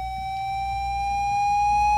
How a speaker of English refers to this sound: And so there are all these dog things, like, if your dog won't stop barking, you can hit this one. It's a whistle to make your dog stop.